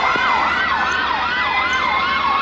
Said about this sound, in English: Nothing says Christmas like sirens. Hear the sirens? Santa must be on his way.